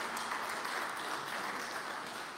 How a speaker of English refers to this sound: I just want to shout out to all the beautiful women of the Lord here. Give them a round of applause, guys, if you want. Yes, thank you.